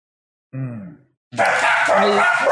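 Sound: dogs barking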